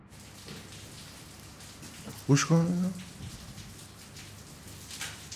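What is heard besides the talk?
rain falling outside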